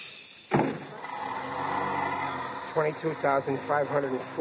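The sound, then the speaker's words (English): A bus door thuds shut with a sharp clunk, followed by a steady mechanical hiss; a few seconds later, voices start talking over it. “Watch the door.”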